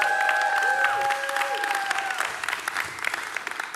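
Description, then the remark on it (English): A church audience claps in a steady, dense patter of applause for the pastor, with a couple of sustained musical tones ringing over it at first before fading; the clapping tapers slightly toward the end. “Come on, give it up”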